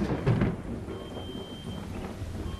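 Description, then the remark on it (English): A thunderstorm rumbles low and steady, with a louder roll of thunder right at the start fading into a continuous hiss like rain. No one speaks. “For just a second, after Ace asked if it was just a coincidence that the only dinosaur ever found with an ornament around its neck was also the first one to wear feathers, the storm inside the energy ball pushed against Ace's fingertips.”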